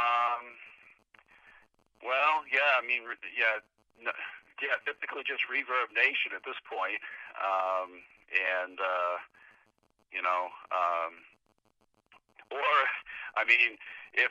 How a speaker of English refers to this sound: Pardon? For whatever reason, this phone's breaking up a little bit. Oh. You know, the landline.